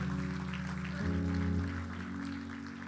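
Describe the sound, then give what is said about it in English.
An audience claps steadily as a dense, continuous wash of applause, over sustained organ-like chords that shift to a new chord about a second in. “Come on, Zoe, clap today if you believe in the message of Jesus.”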